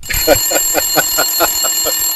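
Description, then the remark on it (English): A bell rings rapidly and steadily in a continuous, metallic trill of about nine quick strikes, loud, with no one speaking over it. “Saved by the bell there.”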